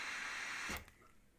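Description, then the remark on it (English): A single quick sneeze: a breathy, hissing build-up that ends in one sharp, explosive burst, then quiet. It is fairly soft overall, and no one talks during it. “Bless you.”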